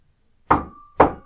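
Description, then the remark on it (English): Two solid knocks of knuckles on wood, about half a second apart, each loud with a short resonant ring trailing after it. No voices, just the two raps against quiet. “I'm supposed to be the one knocking on the wood. You are the only one near any actual wood.”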